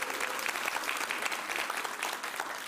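A crowd breaks into steady, sustained applause for a student, dense clapping at an even level from start to finish with no voices standing out.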